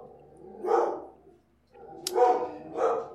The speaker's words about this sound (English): Yep, you sure are barking. You sure are worked up about nothing.